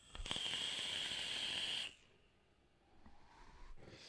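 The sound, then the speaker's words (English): The crackly AJ Holland coils of a stacked series build on a retro vape crackle and sizzle during a hit of Mango Tang juice, a steady hissing fizz with a few sharp pops at the start, lasting about two seconds before dropping to quiet. “And just in case you couldn't hear the crackle.”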